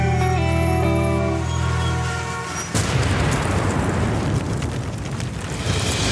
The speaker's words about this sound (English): While we look down at our phones, they'll drop a bomb from a drone, then an explosion.